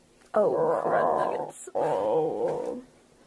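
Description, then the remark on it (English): A person imitates a low, rumbling growl in two long, loud bursts separated by a brief breath, with no talking around them. “Down in the basement, very low growl.”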